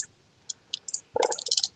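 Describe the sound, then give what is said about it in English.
A printer running: a few sharp mechanical clicks, then a denser burst of whirring, clattering feed noise toward the end, with no one talking. “What's I making over in the printer over there?”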